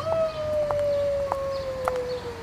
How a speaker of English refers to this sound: Howling? Sounds close. He must be at the park.